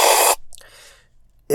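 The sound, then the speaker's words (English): A loud, airy slurp of coffee while tasting it, followed by a softer drawn-in sip and the start of another sharp slurp at the end, with no talking. “When you really slurp it, you do get just a real bitterness.”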